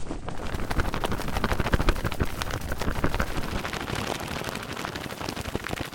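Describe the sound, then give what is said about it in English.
A cotton-polyester shirt flapped hard and sped up, making a dense, steady stream of rapid papery flutters and snaps across a broad hiss, loud and continuous for the whole stretch with no voices. “It's a cotton polyester blend shirt being flapped around like crazy and sped up a bit.”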